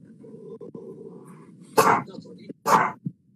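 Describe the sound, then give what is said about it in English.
A dog barks twice, two sharp, loud barks about a second apart, over a low steady background murmur. “My dog's barking as usual.”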